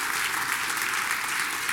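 An audience breaks into steady applause, a dense wash of many hands clapping at once, holding an even level throughout with no voices standing out.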